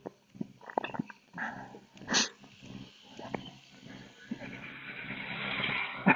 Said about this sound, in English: Another tractor.